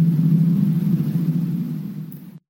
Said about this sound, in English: Hang on, car. One moment.